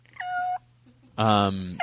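Two short, clear cat meows close by, separated by a brief pause, the second one louder and fuller, with a faint tonal hum underneath.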